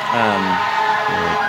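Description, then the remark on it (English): A fire truck passes by, its loud siren wailing in a steady, droning tone that dips slightly in pitch as it goes, over a rumble of engine noise. “I'm grilling … about being the rebound from George Clooney and the fire truck comes in”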